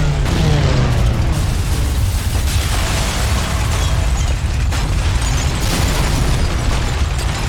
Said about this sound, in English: Kaplowy. Yeah. I mean, I'll find a better explosion sound effect.